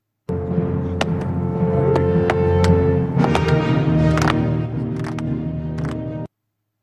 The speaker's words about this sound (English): That was the slow clap at practice.